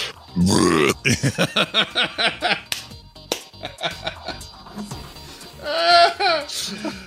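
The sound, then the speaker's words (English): A loud, deep burp erupts at the start, rumbling for nearly a second, then gives way to bursts of laughter and a few voiced sounds. “You did this amazing burp.”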